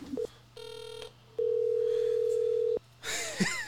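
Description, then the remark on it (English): Electronic phone tones while placing a call to someone at a Thunder game: a short beep, a buzzy harmonic tone, then a long steady ringback-style tone, followed by a burst of noisy chatter as the line connects. “Let me see if I can call him.”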